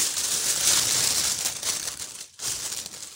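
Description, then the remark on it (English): Steady crinkling and rustling of wrapping paper being torn open and handled as a gift is unwrapped, continuing for about two seconds, briefly pausing, then resuming. No voices. “I like the little wrapping paper here.”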